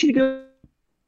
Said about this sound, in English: Wait, what? You cut out.